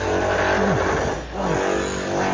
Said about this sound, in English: Oh, noisy truck on the Ronda Road below us.